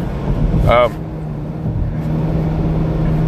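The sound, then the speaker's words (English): A steady, low road rumble fills the cabin of a car cruising on a highway during a drive to or from work, with a brief high-pitched warbling squeak early on before the constant drone resumes. “I do these podcasts on the way to and from work whenever I get on to them, so I'm always driving.”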